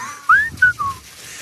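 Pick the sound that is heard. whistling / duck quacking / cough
whistling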